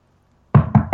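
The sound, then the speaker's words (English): Three quick, loud knuckle knocks on a wooden table after a moment of silence, in a rapid, slightly uneven rhythm. “Oh, I hurt my knuckles knocking on the table.”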